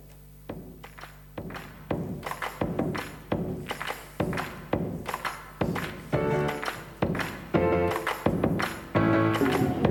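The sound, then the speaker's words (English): Chairs being moved and stacked, a steady series of about a dozen hollow thunks and clunks, some with a brief metallic ring or scrape, growing slightly louder toward the end, with no talking. “So while we're cleaning all the chairs up, I think you guys can turn your attention to the screen and we will watch a quick video before getting into the rest of the message.”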